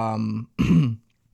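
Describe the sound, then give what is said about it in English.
A loud, low, throaty burp in two bursts: a droning, tonal belch followed after a short gap by a rougher, gurgling one, then silence. “Damn, yo, that burp was nasty, dog.”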